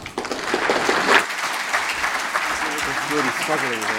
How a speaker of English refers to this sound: Okay, stop clapping, everybody.